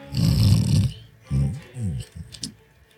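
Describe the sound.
A person mimics snoring: one long, loud, rumbling inhale-snore, then a few shorter throaty snorts trailing off, with no speech.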